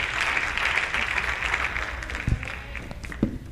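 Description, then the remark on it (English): A large church audience claps unto the Lord as their bishop arrives, a steady, continuous wash of many hands, with a few sharper individual claps standing out near the end. “We clap our hands unto the Lord as our bishop comes.”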